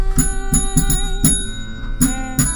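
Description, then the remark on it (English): A bell is rung by guests as a tradition at the end of a night, struck repeatedly in an uneven rhythm, about seven clangs, each bright hit blending into a sustained metallic ring that hangs between strikes. Fairly loud, with no talking. “You guys have to do the honors and ring that bell.”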